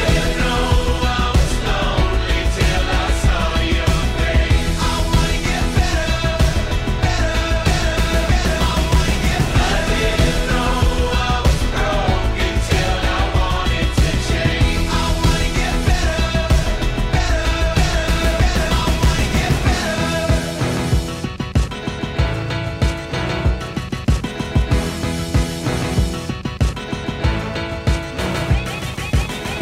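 A loud pop rock song plays steadily with driving drums and layered instruments; about two-thirds of the way through, the heavy low end drops out and the arrangement thins.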